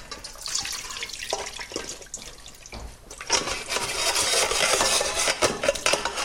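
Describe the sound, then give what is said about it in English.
Milk and poached fish are poured through a colander, straining the milk into a large bowl. The milk splashes and trickles steadily in a continuous liquid pour, with occasional metallic clinks and a brief lull before the flow grows louder again. No one speaks. “Now that's 15 minutes up, and I'm just going to pour the fish through a colander and strain the milk out of it into a large bowl.”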